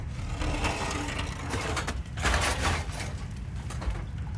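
A rusty, broken-down oven in a room's corner creaks and grinds in a steady, loud stretch of harsh metallic scraping with rapid crackling bursts, swelling midway, with no voices.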